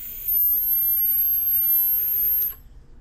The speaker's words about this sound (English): The bigger size has a bigger capacity and more airflow options, but as you rotate those airflow options down, you get to deal with the dog whistle sound.